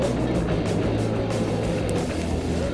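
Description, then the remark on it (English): A Saturn V rocket launch roar at the Apollo 11 liftoff: a deep, loud, continuous rumble heavy in the low end, steady and unbroken throughout with no voices over it. “Liftoff on Apollo 11.”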